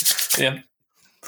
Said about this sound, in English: I'm putting on some hand lotion.